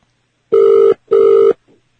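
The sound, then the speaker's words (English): Two long, steady ringback tones, each lasting about 0.4 seconds with a short gap between, heard through a phone line on a call to the Four Seasons hotel front desk, with no one talking, followed by a faint click. “I guess the phone lines are still up, and the internet supposedly is back on today.”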